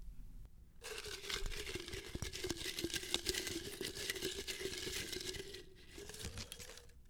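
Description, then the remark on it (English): Continuous rustling and crinkling of paper question slips being shuffled by hand, a dense papery texture lasting about six seconds with no voices. “Nice shuffle. Yes, and I shuffle around this time.”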